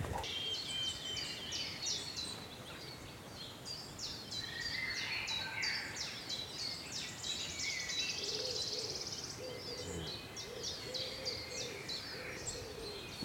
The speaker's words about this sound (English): Lovely wood warbler. That was worth coming all this way for.